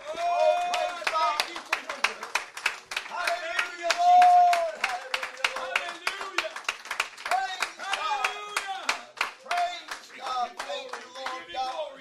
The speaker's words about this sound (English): One more time, could you clap your hands? Could you thank God for what he's going to do, what he's already done?